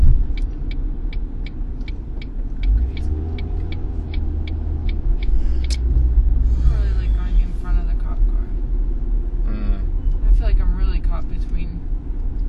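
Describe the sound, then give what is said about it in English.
A school bus and a police car pass by on a busy street, with deep engine rumble, hissing air brakes and a steady ticking sound early on, fairly loud. “Two things, a school bus and a cop car.”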